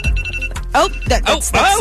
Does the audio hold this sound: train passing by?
no